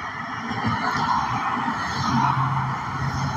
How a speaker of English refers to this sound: Lots of vehicles out. Lots of cars. I'm glad I'm not driving any of them.